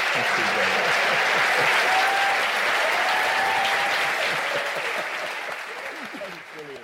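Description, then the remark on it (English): An audience breaks into sustained applause, a dense, steady wash of many hands clapping that holds for several seconds before gradually tapering off at the end. The applause is for two nature lovers after their conversation. “It's lovely there to hear the applause of two people loving nature in conversation with each other.”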